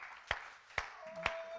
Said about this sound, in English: Let's give God a hand clap of praise before we wrap up today.